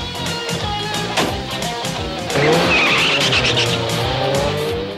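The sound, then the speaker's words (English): A car engine roars as the vehicle, Jackhammer, peels away with Mayhem climbed in, tires squealing loudly against the pavement, the screech rising and sustained for several seconds, with no talking. “Mayhem climbs in, and Jackhammer drives off, squealing”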